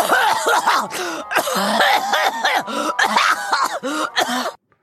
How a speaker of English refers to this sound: Well, she does have that horrible cough as well. We can't forget about that.